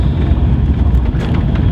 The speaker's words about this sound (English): Right, so I'm back, so I've got the AeroPress set up. I'm going to add some hot water to the AeroPress that's inverted upside down.